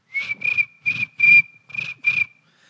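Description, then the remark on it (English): Crickets infesting a house chirp in a steady run of about six fairly loud bursts over a continuous high trill, with no voices present. “Crickets, I've never heard of them infesting a house.”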